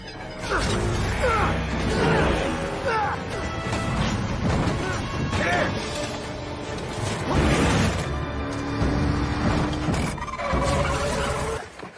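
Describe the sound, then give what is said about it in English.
A loud, chaotic film car-chase crash sequence: heavy smashing impacts and crunching metal burst out repeatedly over a dense, roaring din, intense from start to finish. “as seen in the car chase with Kyle Reese”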